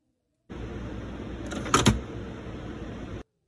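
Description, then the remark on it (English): A printer mechanism runs with a steady, droning mechanical whir for about three seconds, broken midway by a couple of quick, sharp clacks, then stops abruptly. No one speaks. “Is it a printer? It is.”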